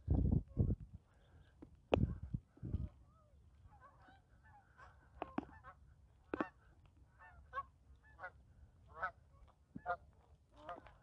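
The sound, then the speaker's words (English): A flock of geese honks repeatedly, with several loud calls at first, then a busy chorus of overlapping honks continuing throughout. “Geese. Is it a gaggle of geese?”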